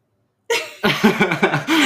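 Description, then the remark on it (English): A cat meows, starting with a sharp breathy burst, then a string of short, rising and falling vocal cries ending in one longer, steadier meow. No one talks. “That's his cat.”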